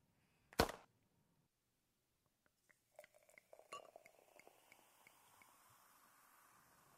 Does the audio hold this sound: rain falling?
no